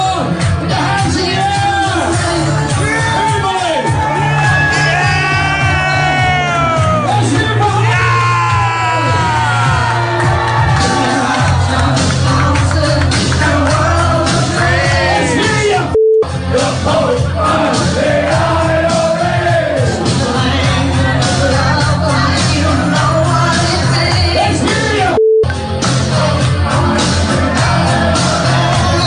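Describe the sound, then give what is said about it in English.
A large crowd loudly chants "F the Pope and the IRA" in unison to the tune of a pop song, continuous and roaring, with two brief bleeps cutting through the singing partway in. “F the Pope and the IRA, is to the tune of …”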